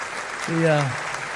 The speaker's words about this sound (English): I know our, you can go ahead and clap for them now. That's good.